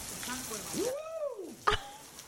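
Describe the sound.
Heavy rain pours down in a steady hiss during a storm, then a voice lets out a long rising-and-falling exclamation over it, followed by a short sharp knock.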